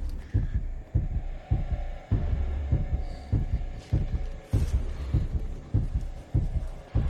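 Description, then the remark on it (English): A deep, thudding heartbeat sound effect in a movie score pulses steadily, roughly twice per second, with low booming beats over a dark, humming musical drone. No voices are present. “Hear the sort of, it's like a heartbeat going on, eh?”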